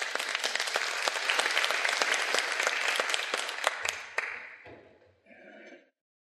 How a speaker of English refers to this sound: So give those people a round of applause, folks.